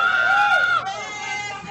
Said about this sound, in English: The crowd go wild. Crowd go wild.